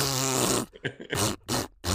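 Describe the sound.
A voice blows a loud raspberry imitating a fart: one long buzzing blast followed by three shorter sputtering bursts separated by brief gaps, with no talking.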